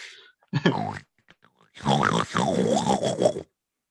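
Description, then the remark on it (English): A person voices a talking pet pig: a short grunt, a pause with faint clicks, then a longer run of warbling, oinky pig-like vocal noises rising and falling in pitch, fairly loud. “How does a pig talk?”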